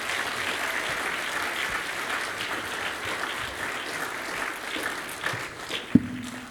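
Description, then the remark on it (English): A crowd claps in a steady, dense round of applause for several seconds, a broad patter of many hands with one sharp louder clap near the end as it starts to thin. “Give them a nice big round of applause.”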